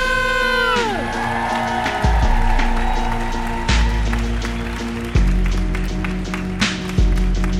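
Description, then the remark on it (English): A crowd at a stand-up comedy show applauds and cheers for a comedian taking the stage, with dense, steady clapping and scattered whoops that keep up at a loud level throughout. “Please give it up for”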